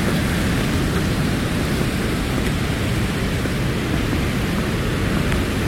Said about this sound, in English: And I'm walking past a waterfall, stupid timing.